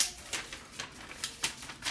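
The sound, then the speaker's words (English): Soft, crisp paper crinkling and creasing as a page torn from a notebook is folded in half, a handful of brief rustling bursts spread across a couple of seconds, fairly quiet, with no one speaking. “So I folded the paper in half again.”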